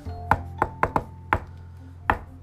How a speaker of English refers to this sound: Anyway, you know, so if you come in over the Ghost Radio, if you want me to for sure know it's you, just knock 2 bits in a haircut or whatever it is. Shave and a haircut, 2 bits. Knock.